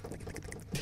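Quick, steady clicking of fingers typing on a laptop keyboard, a brief run of soft keystrokes with no voices.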